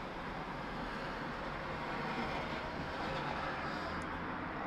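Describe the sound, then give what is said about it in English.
Steady, broad rumble of cars driving past outside, a continuous wash of road noise that holds an even loudness throughout with no distinct pauses or voices. “So sorry about the cars driving by, folks. We smoke outside.”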